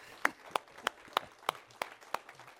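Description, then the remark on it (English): A round of applause from a church audience celebrating what God has done this year, heard as a steady, rhythmic series of about eight sharp claps standing out over a softer patter of clapping, moderately loud, with no talking. “Can we celebrate just with a round of applause what God's been up to this year?”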